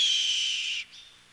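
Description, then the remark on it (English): A red-tailed hawk's attack cry, played as an audio recording in a vineyard to scare off starlings: one loud, harsh, drawn-out scream lasting under a second, trailing off into a short, fainter tail, with no other sounds around it. “That's the attack cry of a red-tailed hawk.”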